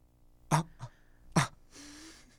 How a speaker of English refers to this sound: I'm literally letting out gasps of air just because we have a podcast. My mouth would just be fully open.